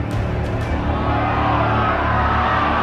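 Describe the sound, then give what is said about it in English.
A large arena crowd roars and cheers continuously as Lord Pallas steps forward on the balcony, a dense, steady wall of voices with a few sharp whoops rising at the start, loud throughout with no pauses. “Before she could answer, the crowd erupted as Lord Pallas stepped forward on the balcony with Decion to his right.”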